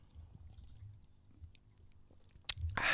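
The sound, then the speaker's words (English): Quiet wet mouth sounds build to a sharp click and then a loud, airy slurp of fizzy, not very cold beer right at the end, with no talking. “Let me just have a slurp.”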